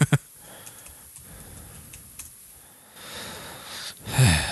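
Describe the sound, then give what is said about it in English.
Noisy breaths rush straight into the microphone, a long airy exhale swelling into a louder, rougher gust at the end, with faint ticking clicks earlier and no talking. “Heavy breathing on the mic.”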